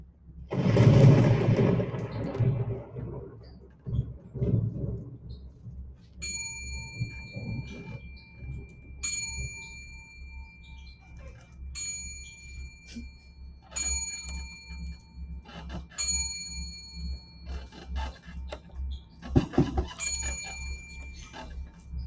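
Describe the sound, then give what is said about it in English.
A clock strikes twelve, slow resonant bell-like chimes ringing out one after another over a steady low rumble, following a brief burst of rough noise at the start. “I've been asleep just before the clock started to strike.”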